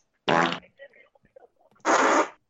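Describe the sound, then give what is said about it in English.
Two loud fart noises, each about a third of a second long, separated by a pause filled with faint scattered sounds. “so there's probably fart noises being played over this right now.”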